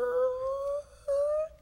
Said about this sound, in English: A puff of dust. A screech.